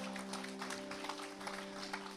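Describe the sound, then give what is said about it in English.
A group clapping together for four adults who said yes to Jesus, a dense, steady patter of many hands holding an even level throughout, with a low sustained tone, like an instrument or hum, running underneath. “And saying, I'm going to clap for that.”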